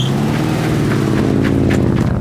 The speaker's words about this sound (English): The creepy guy in the suit busts into the parking lot and jumps into a car and speeds away.